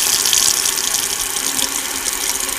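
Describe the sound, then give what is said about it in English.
Tap water from the Quabbin Reservoir pours steadily from a household faucet in Arlington, Massachusetts, a continuous hissing splash that stays loud without pause for a few seconds, with no voices. “When I first heard that 4 towns were flooded to build the reservoir, I imagined a little Atlantis down there, but the water coursed through some intact village on its way to my faucet, and it was kind of haunting.”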